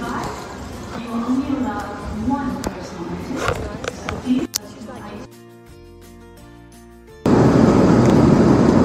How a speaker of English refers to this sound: So we're on a plane headed to Miami from Savannah.